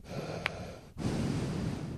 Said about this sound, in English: I think I get more nervous about breathing into the mic than, you know, because I can sit here and be like.